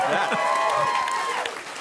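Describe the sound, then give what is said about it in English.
A crowd breaks into steady applause, with dense clapping mixed with cheers and what sounds like a whistle, loud, fading slightly toward the end. “By the way, how about a round of applause for estuary, right?”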